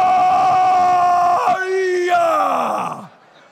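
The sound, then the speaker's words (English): A voice imitates someone vomiting loudly: a strained, drawn-out retching groan lasting about three seconds, breaking briefly midway and sliding down in pitch before trailing off. “You're like that when you vomit, too.”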